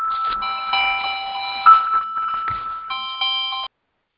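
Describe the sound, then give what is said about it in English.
An electronic alarm chime rings out in loud, steady, high-pitched tones, broken by a couple of soft thumps. It falters briefly, resumes, then cuts off abruptly. No one speaks. “And the alarm goes off when you say that.”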